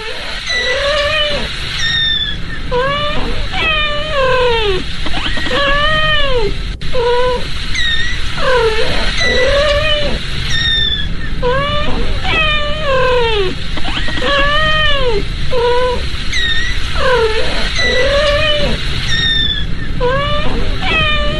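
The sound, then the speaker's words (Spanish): A Ragdoll cat, a breed from the United States, meows steadily and repeatedly, its rising and falling calls coming in quick chatty bursts that sound almost like talking, continuing for the whole stretch. “Esta es la raza Ragdoll, una de las más famosas. Esta es de Estados Unidos. Tiene ese sonido, es el único que maulla así, es realmente impresionante.”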